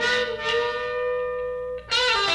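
A 1960s rock recording with heavily distorted electric guitar droning on sustained, buzzing tones. It dips briefly, then a bright, crashing burst of full band sound returns, loud throughout.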